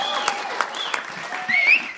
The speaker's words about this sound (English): Thank you all for coming out. You guys can give yourselves a deeper round of applause, a little more self-esteem, a little more.